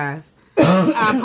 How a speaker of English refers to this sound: Excuse me for my cough. This is very unprofessional, isn't it?